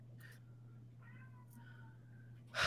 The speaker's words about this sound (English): Oh, yeah. The cat's in the background. Yeah, the cat's in the background.